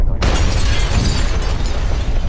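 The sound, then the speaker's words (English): A big explosion bursts in with a sudden loud blast, then a dense, roaring rumble with crackling debris that stays heavy for a couple of seconds, with no voices. “There's the big explosion, and we're all back here now.”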